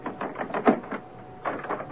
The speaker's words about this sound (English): Grace Poole, unlock the door.